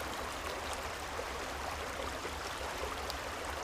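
A steady, continuous rush of flowing stream water with soft bubbling and trickling texture, even in level throughout, with no voices.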